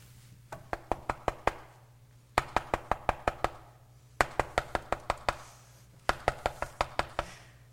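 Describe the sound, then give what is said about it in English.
Several bursts of sharp, rapid knocking, each a run of five to seven crisp raps, separated by short pauses over a steady low electrical hum; the knocks are fairly loud. “Knock, and the door will be open. It's a knock. What is knock? How do you increase intensity?”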